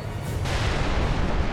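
explosion

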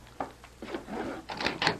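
office door opening

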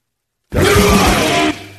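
burp

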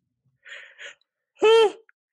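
yawning

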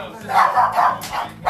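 dogs barking excitedly

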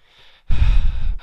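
heavy breathing

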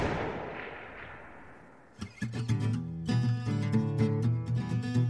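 gunshot

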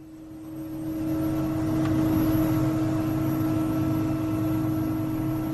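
helicopter flying

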